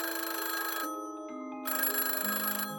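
A telephone call to Santa rings twice, each burst of bright, rattling bell tone lasting about a second with a short gap between. Fairly loud, with no one speaking.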